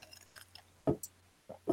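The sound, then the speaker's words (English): Someone knocks back a straight shot of vodka: after a few faint clinks, several quick wet gulps and swallows come in bursts, with no talking. “Or you shoot it straight like I just did.”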